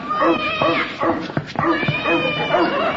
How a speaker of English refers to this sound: I'm sure the dog chased the cat back to the drugstore.